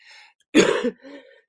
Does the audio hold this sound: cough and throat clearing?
yes